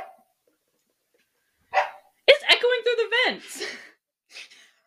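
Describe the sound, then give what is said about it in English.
A dog, Berkeley, gives a few quick breathy sniffs at food that fell into an air vent, then a short run of yelping barks and whines that slide downward, followed by another brief sniff, all sounding faint as the sound travels through the vent to a vent right above the listeners. “this bitch is sniffing at the food that fell in the vent, and it's traveling through, and there's a vent right above us, so all I'm hearing is, like, Berkeley from heaven.”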